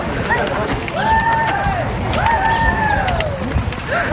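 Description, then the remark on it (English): People who know each other yell back and forth over a steady crowd murmur. Two long, drawn-out calls rise and fall in pitch, one answering the other, with fainter shouts and chatter around them. “So they always like yell back to each other, back and forth.”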